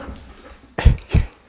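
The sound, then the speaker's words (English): A dog lets out two short, gruff woofs about a third of a second apart, loud against a quiet room, with no talking. “my dog is going to... Okay, Tracker, get out.”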